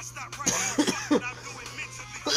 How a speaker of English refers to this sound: I'm not that cool, guys. I took a dab while the intro was going on, and I thought I was going to play it off and be cool and not cough, but I have failed y'all.